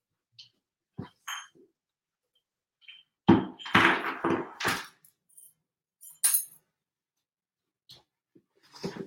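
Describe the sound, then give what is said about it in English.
A handmade glass bowl, made at a glass blowing workshop, is picked up and handled, giving scattered knocks and thumps, a brief cluster of louder bumps, and a few light glassy clinks amid quiet pauses. “Yeah, let me show you my bowl. Hold on.”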